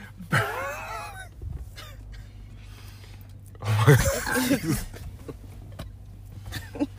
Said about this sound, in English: I'm fucking gonna cough again. Bro. Right. Oh my god, this shit hurt.